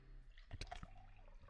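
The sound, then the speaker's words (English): Water splashes briefly into a cup in a short, soft pour with a few dripping, sloshing sounds, fairly quiet, with no one talking. “I didn't realize how bad I was getting cotton mouth until you had to pour that water.”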